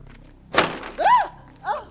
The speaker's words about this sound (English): Sorry, cupboard door fell off.